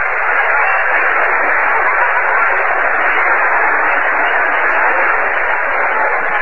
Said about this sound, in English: So at the end of three innings, the Cubs are leading by a score of 3-2. Marty is going to get a big cheer from the stands out there as he goes towards center field. Let's listen to it.